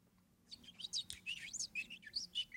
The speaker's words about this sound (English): Birds.